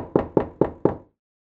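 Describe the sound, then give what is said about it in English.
Four firm knocks on an apartment door in a steady, even rhythm, fairly loud, followed by silence, as teenagers go door to door at an apartment complex on a Monday morning, waking up families. No voices. “But that doesn't stop a handful of Silverdale teenagers from going door to door, waking up families and rounding up kids.”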